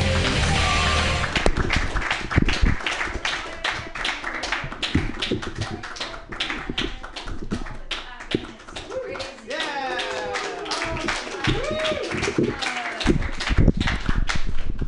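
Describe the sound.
An audience breaks into loud, dense applause for the person who runs the event, continuing steadily for about fifteen seconds, with scattered whoops and cheering voices rising above the clapping.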